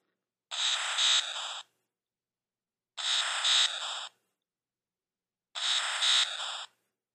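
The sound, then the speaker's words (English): A retro, Atari-style synthesized tone plays three times, each a bright, buzzy electronic burst about a second long, separated by even pauses of silence. No one speaks. “But the cool thing about this one, it's another one that kind of sounds like an old, like, video game, like Atari game.”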